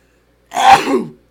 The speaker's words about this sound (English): But hang on, excuse me, I gotta sneeze.